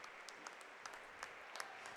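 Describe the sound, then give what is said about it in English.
A basketball crowd on its feet claps and cheers steadily in the final seconds of Cros-Lex's undefeated-season playoff win, a dense wash of applause with scattered sharper claps standing out, fairly soft, with no one speaking. “The crowd is on their feet.”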